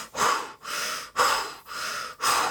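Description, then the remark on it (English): Heavy, labored breathing of cyclists climbing a road, in a fast, steady rhythm of about five hard breaths in and out, like someone straining through exertion, with no talking. “You hear heavy breathing.”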